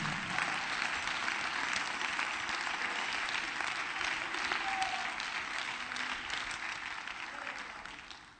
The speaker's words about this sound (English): Come on, let's clap our hands to him again.